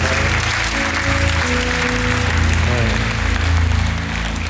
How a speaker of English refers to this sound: And let's go ahead and give the Lord another hand clap and a shout of praise.